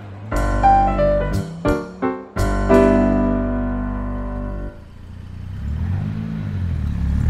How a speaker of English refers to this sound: Oh, there she goes. My car again. Go on, boys, after her. Hurry up and get her.